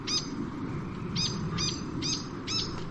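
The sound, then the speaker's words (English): A fantail's shrill call: five quick, high chirping bursts in an uneven rhythm, standing out clearly over a steady low rumble of background noise. “Merry little pea waka waka, the fantail, was watching, and his shrill voice suddenly rang out with laughter he could not contain.”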